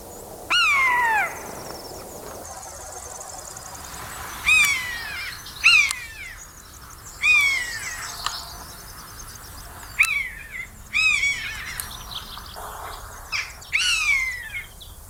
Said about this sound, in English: You hear this lovely mewing call. It sounds like a bit like a cat call. They make it almost all the time when they're soaring around. They don't seem to scare their prey, so you quite often hear buzzards long before you see them.